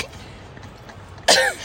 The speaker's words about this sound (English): Sorry, guys. I get the hiccups when I've reached my limit.